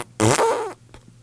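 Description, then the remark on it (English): A single loud, buzzy raspberry blown with the tongue out, mimicking a fart. It lasts about half a second and fades into quiet room tone. “His tongue out. It do look like a fart for real.”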